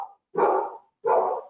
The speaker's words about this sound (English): It's my dog barking at the car outside.